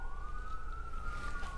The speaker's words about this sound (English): I don't know if you guys hear those sirens. Tea. Oh, it's going the other way. Yeah, not coming here. So I thought something exciting was going to go down.